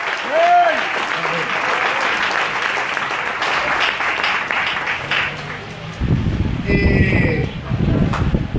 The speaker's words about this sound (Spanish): Si usted, denle el aplauso, si usted cree.